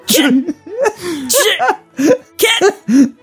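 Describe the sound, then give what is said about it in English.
A rapid string of about half a dozen loud sneezes from more than one person, each a sharp breathy burst with a voiced edge, coming one after another with no talking. “Guys, stop sneezing.”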